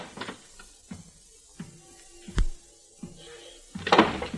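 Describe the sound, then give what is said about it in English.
A door of a suite opens: a few soft clicks and knocks from the latch and handle, one sharp thud near the middle, then a rustling, scraping swing at the end. No voices. “Now the clouds were beginning to lift, and at the same time, the door opened in the suite and the silhouetted figure of a man entered the room.”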